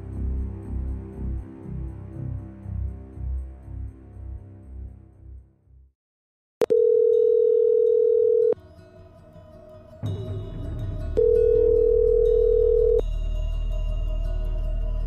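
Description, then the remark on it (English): After a brief stretch of music and a moment of silence, a click is followed by a phone ringing on the line: two long, steady ring tones separated by a pause, clear and fairly loud. “Another phone call is in order to straighten this out.”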